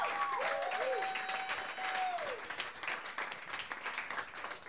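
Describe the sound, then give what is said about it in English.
An audience at a comedy show breaks into sustained, dense applause for a performer, holding steady for several seconds, with a long, bright whistle-like tone gliding over it early on before the clapping continues alone. “give him a round of applause, yeah.”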